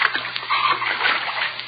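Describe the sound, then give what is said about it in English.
Continuous sloshing and splashing as someone moves through shallow water covering a basement floor, with broad watery splatters rising and falling over nearly two seconds and no voices. “Water. Basement floor covered with water.”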